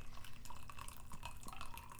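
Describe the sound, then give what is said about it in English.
Tea pours into a cup in a steady, quiet trickle for about two seconds, with small gurgles and drips and a faint rising ring as the liquid fills. No voices. “Hold on, I'm gonna pour myself a nice cup of tea here.”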